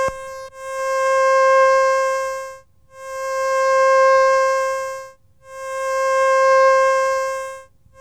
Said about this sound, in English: Now a triangular wave.